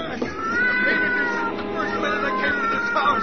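A cat, Lady Susie, yowls and caterwauls in long, wavering cries that rise and fall, loud, agitated and distressed over about three seconds, writhing and scratching as she is pushed toward a furnace in a cellar.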